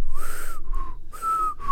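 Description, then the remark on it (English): A voice imitates a child's wheezy, whistling asthmatic breath: several airy, high whistle-like tones repeat in quick succession, like strained panting breaths, fairly loud, with no talking. “And you could tell, too, because when you hold her up and listen to her back, you could hear the wheezing. Like a whistle.”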